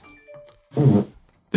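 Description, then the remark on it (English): A short, loud, raspy fart bursts out for about half a second after a few faint tonal chimes, with no talking. “That my fart happened?”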